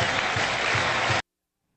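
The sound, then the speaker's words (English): A football stadium crowd cheers and applauds in a loud, dense roar that holds steady for just over a second, then cuts off abruptly into silence, as Jack Hoffman scores a touchdown. “I mean, just listen to that crowd. I know. I'm just listening to them cheer.”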